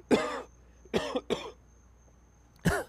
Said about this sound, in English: Excuse me for a little coughing break here.